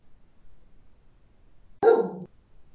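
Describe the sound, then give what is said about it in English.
A single loud, sharp dog bark rings out after a stretch of near silence, then cuts off quickly. No one speaks. “Sorry, my dog's going crazy.”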